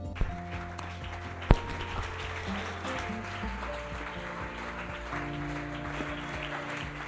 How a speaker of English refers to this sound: Hallelujah. You are clapping for Jesus. You can make it better. Make it louder to the glory of God.